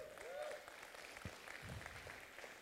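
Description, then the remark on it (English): A church audience breaks into steady applause for Jesus, many hands clapping together in a dense, sustained wash of sound with a brief voice rising over it at the start. “Come on, give a clap for Jesus.”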